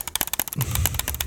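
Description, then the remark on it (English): A voice imitates rapid mouse clicking on a clickbait headline with a quick run of sharp mouth clicks, about a dozen crisp ticks in a fast, uneven rhythm, with a brief low hum midway. “I had to make sound effects over here.”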